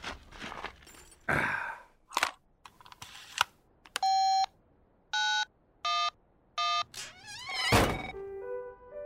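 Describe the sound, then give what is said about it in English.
A satellite phone keypad sounds four distinct electronic dialing beeps, each short and steady, spaced roughly a second apart, as someone dials an emergency call on an unregistered satellite phone. Heavy breathing and clunky handling noises come before, and a rising chirp follows. “I see that you are calling from an unregistered satellite phone.”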